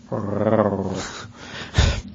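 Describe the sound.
A person growls like a dog, imitating a Marissa Tomei growl: a single raspy, throaty rumble lasting about a second, loud, followed by a short low burst of noise.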